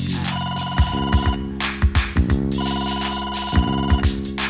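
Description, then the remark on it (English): A phone rings with a melodic electronic tone, a short tune repeating about every two seconds over a steady thumping beat, fairly loud, with no one speaking. “Then all I do is push number two, let the phone ring, and then I ask for you.”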